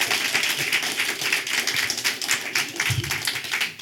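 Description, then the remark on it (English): An audience at a Christian worship gathering applauds a man steadily for several seconds, a dense, crackling wash of many hands clapping at a fairly even loudness with no voices standing out. “Let's give Brother Bryce a round of applause in his house.”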